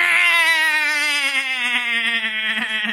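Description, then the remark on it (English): A person imitates the screaming goats from the film Thor: Love and Thunder with one long, loud, nasal bleat that holds steady for about three seconds and sags slightly in pitch, with a wavering, strained edge. “There are a few good scenes in Thor, but the fucking goats piss me off.”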